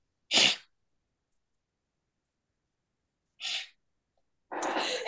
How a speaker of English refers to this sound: Bless you